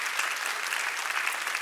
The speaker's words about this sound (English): Come on, one more time, clap your hands and praise him for that power that sets us free.